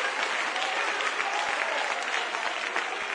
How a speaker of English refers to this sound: Clap your hands one more time and you may be seated.